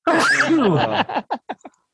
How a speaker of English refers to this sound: Sorry. Bless you.